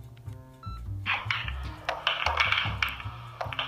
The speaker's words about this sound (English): And like Chicago Whitey, he was lured by the sweet siren song of clicking pool balls.